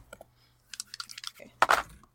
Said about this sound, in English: All right. And roll me 3 dice.